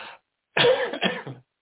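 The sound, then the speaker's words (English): A person with a cold coughs, a short raspy burst followed by two louder, harsh coughs in quick succession, then silence. No talking. “And my cold catches up to me.”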